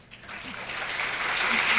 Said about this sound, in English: so they can enjoy another round of applause for their contribution today. Here we go.